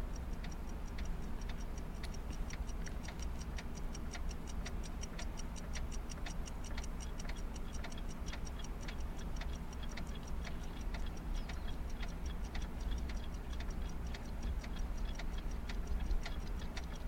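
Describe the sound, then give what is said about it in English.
Many clocks tick steadily together in a clip from the film Back to the Future, their crisp overlapping ticks forming a continuous rhythmic clatter over a low background hum, with no one speaking. “You're about to see my cool clock, too.”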